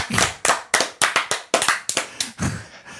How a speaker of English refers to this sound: Hand clap. Hand clap.